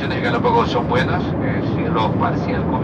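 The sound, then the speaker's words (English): A steady, loud airplane cabin engine drone fills the whole clip on a flight from Quito to the Galapagos, a dense low roar with indistinct voices murmuring over it. “This is Radiolab, and today we begin on a plane.”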